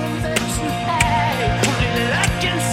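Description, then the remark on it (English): A dense rock band plays loudly while a ringing cymbal bell is struck sharply about once every half second, each bright ping cutting through the driving drums and guitars. “The bell pop right here.”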